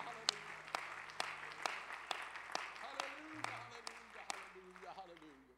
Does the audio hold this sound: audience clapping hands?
yes